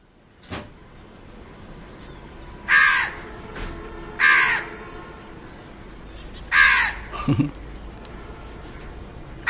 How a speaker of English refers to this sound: Alexa, crow. Here is a house crow.